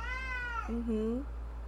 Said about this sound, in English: and yes, meow, meow, meow.